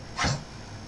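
A female dog lets out one short, harsh hacking cough, like it's about to throw up. The sound is brief, with quiet background and no talking.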